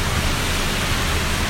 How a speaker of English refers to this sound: That's a lot of rain in case you're... In case our voices are being drowned out right now. It's because the storm has arrived.